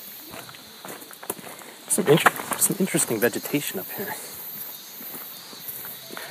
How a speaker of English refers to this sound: Should be some pretty cool sound. This footsteps on the wood.